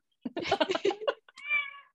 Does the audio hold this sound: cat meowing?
yes